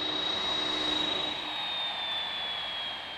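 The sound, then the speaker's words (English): A UPS jet airplane taxis in on an airport ramp as it arrives, its engine roaring steadily with a high turbine whine that slowly drops in pitch. No voices are heard. “We'll actually take you out to the ramp where the airplane's going to taxi in, so we'll see it arrive.”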